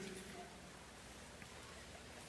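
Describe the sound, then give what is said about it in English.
Rain falls outside as a faint, steady hiss, a continuous soft wash of noise without distinct drops. “This just in, it's raining.”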